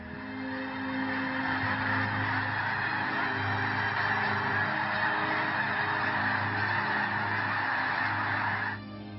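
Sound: birds calling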